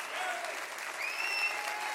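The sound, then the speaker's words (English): An audience claps their hands in praise to God during worship, a steady, dense wash of applause that holds throughout, with faint voices and a few sustained singing or cheering tones rising over the clapping. “Come on, clap your hands and rejoice.”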